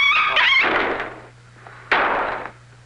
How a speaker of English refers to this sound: They actually slammed the window pane on the dog to get that sound.